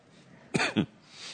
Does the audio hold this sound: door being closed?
no